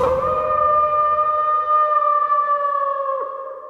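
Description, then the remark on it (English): A person lets out one long, steady wolf-like howl, loud, holding a bright sustained note for several seconds before it dips slightly and fades away. “All right, baby, I'm howling for you.”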